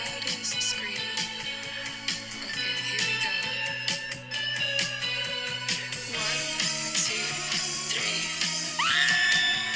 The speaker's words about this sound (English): Okay, so there's this bit where she goes, I've been practicing my loudest and longest scream.